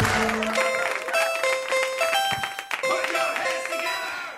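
An audience at a comedy show claps along steadily in rhythm, sharp hand claps layered under a bright, tuneful children's song with singing, the clapping continuing throughout at a lively, even pace.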